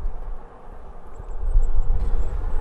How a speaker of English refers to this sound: Back on the bus,